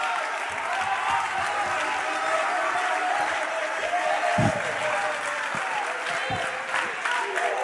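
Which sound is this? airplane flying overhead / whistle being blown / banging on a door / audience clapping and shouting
audience clapping and shouting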